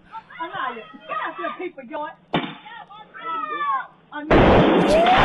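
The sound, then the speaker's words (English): People talk excitedly, a sharp pop cuts in briefly, then a loud bouncing Betty firework explosion bursts near the end, a harsh, sustained crackling blast that drowns out the voices. “What kind of that damn firecracker that was?”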